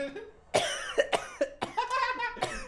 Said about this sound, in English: He coughs.